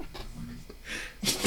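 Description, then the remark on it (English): Two sharp sneezes in quick succession, the second louder and breathier than the first, following a moment of faint murmuring voices. “Bless you, twice.”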